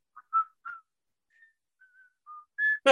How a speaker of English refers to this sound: …, do you know that theme song? I do. Okay, go ahead. Do you know how to whistle it?